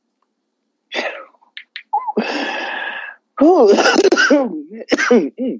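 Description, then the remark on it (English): A short burst of coughing and a rough, drawn-out throat clearing, followed by a person talking animatedly. “this made me cough.”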